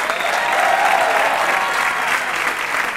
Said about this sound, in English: Did you hear that? Are you hearing people clapping? I heard zero clapping.